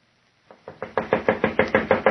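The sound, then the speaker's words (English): A steady series of about ten sharp knocks on a door after 8 o'clock, starting soft and quickly growing louder, rapping in an even, insistent rhythm with no voices. “answer it. It's after 8 o'clock. It must be there.”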